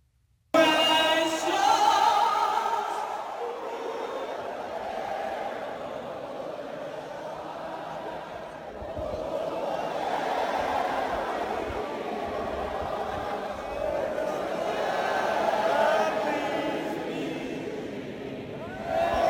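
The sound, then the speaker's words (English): A stadium crowd of thousands sings the rest of the Star Spangled Banner together after the singer's microphone stopped working, voices blending into a loud, continuous wash that swells and dips slowly over about twenty seconds. “The crowd continued on singing the rest of the Star Spangled Banner.”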